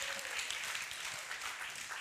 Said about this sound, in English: Let's give him a round of applause again, just because he's so awesome.